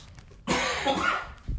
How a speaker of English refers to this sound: Sorry, I do have a bit of a cough now. I'm hoping it goes away.